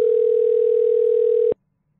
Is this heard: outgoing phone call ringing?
yes